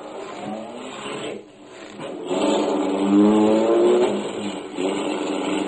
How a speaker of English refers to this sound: The car shot out of a side street only moments after I heard it start. It whizzed past me as I reached the corner and disappeared around a corner.